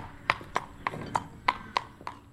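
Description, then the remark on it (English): Steady clip-clop of a dark brown horse's hooves walking on a hard surface with a big, long stride, each leg in line with the other, about eight evenly spaced footfalls in a relaxed rhythm, clear, with no talking. “Good walker, good actioned horse. Each leg's in a line with the other, and he's got a big long stride.”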